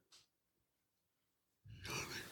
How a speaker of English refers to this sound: You're yawning and you're like twirling your fucking wires and like...